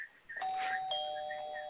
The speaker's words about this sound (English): Okay. Well, then next time I hit the doorbell, you answer.